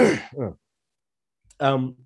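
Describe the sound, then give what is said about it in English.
A person clears their throat: a rough, raspy double burst, a short pause, then a longer gravelly voiced rumble, fairly loud with no speech around it. “And sorry, I'm going to clear my throat again.”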